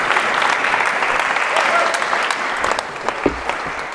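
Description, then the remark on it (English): Steady audience applause for an illustrator who drew the pictures for the session, filling the whole stretch, a dense wash of many hands clapping at an even loudness, with a few sharper individual claps standing out near the end. “You shouldn't clap until you've seen them and seen if they're any good, but...”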